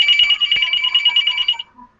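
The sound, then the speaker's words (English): A phone rings with a rapid, trilling electronic tone that warbles continuously for about a second and a half, loud, then cuts off abruptly. “Why is my phone ringing?”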